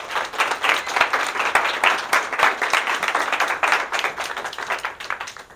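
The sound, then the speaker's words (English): An audience at a convocation applauds a speaker steadily, a dense crackle of many hands clapping at once that stays strong and even for several seconds with no one speaking. “So give him a round of applause, Mr. Kummer, our final convocation speaker of the year.”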